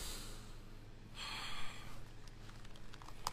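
human body sound, deep breathing

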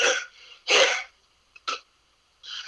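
human body sound, suppressed cough

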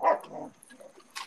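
animal, dog barking

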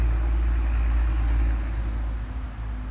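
vehicle, road traffic passing by

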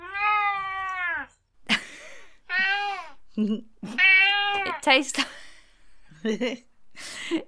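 animal, cat meowing

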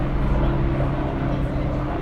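vehicle, helicopter flying past overhead

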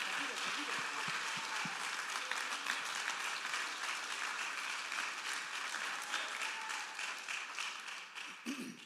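crowd, audience applauding

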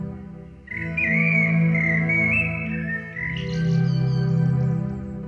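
bird, birds chirping and singing

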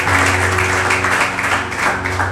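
crowd, church audience clapping

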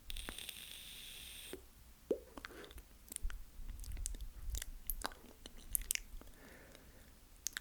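human body sound, inhaling

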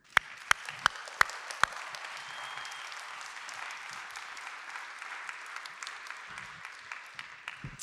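crowd, round of applause

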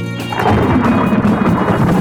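nature, thunderstorm with rain

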